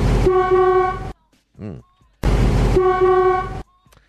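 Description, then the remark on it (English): A voice imitates an old car with two long, loud, buzzy honking blasts, separated by a brief warbling vocal sound and a short pause, clear. “Rev up your engine”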